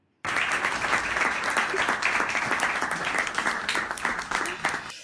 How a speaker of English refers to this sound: So thank you. I really just here, I'm going to give you a clapping, you know, we got to give you a clap.